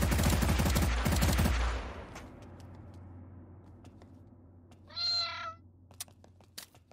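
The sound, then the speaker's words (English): A cat lets out a single short, clear meow after a loud burst of rapid booming bangs fades into quiet with scattered faint clicks. “Is the cat an Easter egg? Decode cat.”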